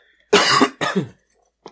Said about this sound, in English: You dying? No. This is another episode where you cough?